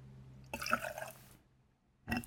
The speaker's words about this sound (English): After that, I'm guessing there's some tequila in this? Tequila. One part tequila, actually. All right. Let's give it a pour in.